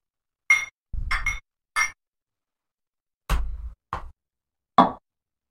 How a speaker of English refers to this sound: All right. Let's do quick cheers.